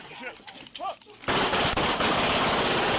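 Muffled voices give way to a sudden, sustained burst of rapid automatic gunfire from a Glock handgun fitted with an illegal switch that made it a miniature machine gun, fired at police officers serving warrants at a home in Houston; the shots blur into a loud, continuous staccato clatter.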